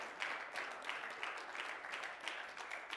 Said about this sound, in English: Let's clap our hands and praise him tonight. He's worthy of it.